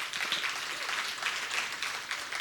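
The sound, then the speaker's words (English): A crowd applauds steadily, many hands clapping at once in a dense, continuous patter that is moderately loud, with no voices standing out. “You know, I think some of you who started clapping there, I think all of us should celebrate that more every day.”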